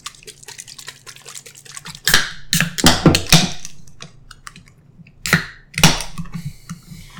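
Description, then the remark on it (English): Rapid mechanical clicking and ratcheting from a hand crank being turned on a can, in two louder rasping bursts separated by quieter ticking, with no voices. “The can instruction suggests 10 times. Okay, let's crank it.”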